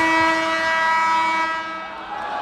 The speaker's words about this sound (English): Hold on, we're gonna have the buzzer.